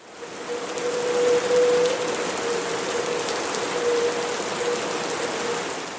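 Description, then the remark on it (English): Steady, dense hiss of heavy typhoon rain pouring down in Taiwan, with a faint mechanical whir running through it and no voices. “While some places in Taiwan had to take a few days off due to heavy rain and strong winds, it's been a long time since the majority of Taiwan all had a typhoon day off.”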